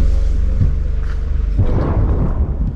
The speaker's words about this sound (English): Minka. Incoming. It's a mortar, explains the doctor. Yes. Sometimes it rustles and then bang.